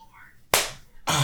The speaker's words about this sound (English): Don't ever clap hard again like that. That hurt you? That really snapped my ear. Oh, wow. Yeah, I'm sorry. No loud claps. no Hulk claps up in here.